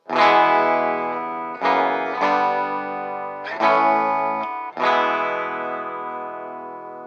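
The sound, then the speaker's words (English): A distorted Norlin-era Gibson Futura electric guitar plays a series of sustained power chords, each struck hard and left ringing with a thick, buzzing harmonic tone and slight chorus shimmer. No voices. “That guitar is so sick”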